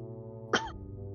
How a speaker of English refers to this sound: As he's coughing out his lungs.